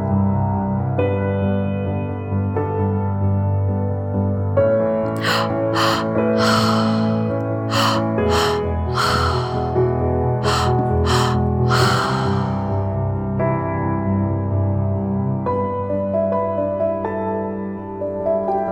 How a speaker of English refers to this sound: Big breaths into your stomach, topping it up in your chest, and letting it go. Always through the mouth. One breath after the other. That's it. Keep breathing.